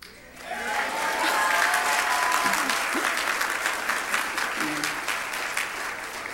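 A crowd bursts into loud, sustained applause with scattered shouts and cheers mixed in, a dense burst of clapping that swells quickly and stays steady for several seconds.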